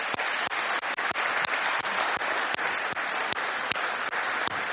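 A steady round of applause from a crowd, dense overlapping claps forming a continuous wash of sound with a few sharper individual claps standing out, lasting throughout without any talking.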